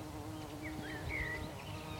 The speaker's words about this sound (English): Hello, bee.